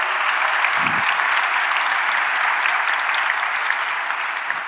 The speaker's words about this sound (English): And I also have one final surprise source, which is 10 years of JSConf EU talk proposals. 10 years, my goodness, that is so much work. Can we have another round of applause for 10 years?